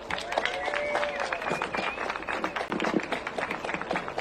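An audience bursts into sustained applause, dense overlapping clapping with a few cheers and whistles rising above it, filling a large room for several seconds.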